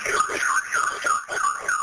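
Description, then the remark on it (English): A house alarm blares continuously during an emergency call, its high electronic tone warbling up and down in a fast, steady cycle about twice a second, loud and unbroken throughout. “to turn off the alarm”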